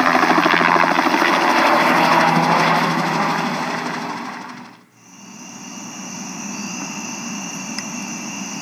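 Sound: helicopter flying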